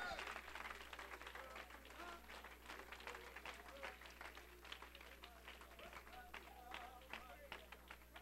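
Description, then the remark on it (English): An audience claps steadily for several seconds to give praise to God, a dense patter of many hands at a fairly even level, with a low hum underneath and some voices mixed into the applause. “Yeah, let's clap our hands.”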